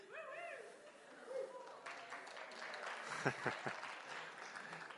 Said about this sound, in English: Why is it you always get a cheer when you... Anyway. It's always the same two people.